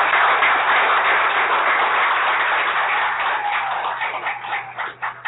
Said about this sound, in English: So another round of applause for them.